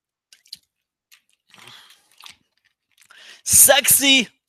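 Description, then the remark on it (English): Someone drinks a glass of water: soft mouth clicks and quiet gulping sips, then a loud, breathy, satisfied vocal exhale at the end. “Let me get a drink of water and I'll tell you what I saw.”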